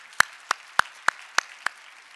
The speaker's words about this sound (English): Can we just give our G2G Vision Worship Team a big, big round of applause?